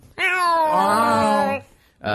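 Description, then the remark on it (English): A cat on a desk lets out one long, loud, drawn-out meow, followed by a short pause and the start of a second meow. “With me is my cat.”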